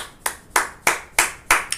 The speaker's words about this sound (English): Bonang Matheba has been killing the game. A round of applause, Bonang.